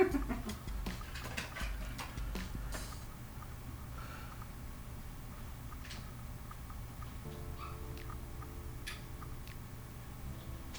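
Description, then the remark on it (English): Faint puppy noises, a few soft yips and whimpers scattered over a low background hum with no one talking. “now I have to see the puppy before I go.”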